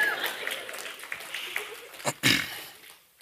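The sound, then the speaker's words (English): A church audience claps after a sermon in a steady patter of many overlapping hands that stays fairly even, then thins out near the end after a couple of louder bursts. “You can clap”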